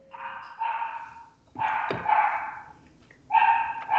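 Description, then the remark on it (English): Dogs bark in three drawn-out bursts, loud, with short gaps between them and no voices around. “Dogs?”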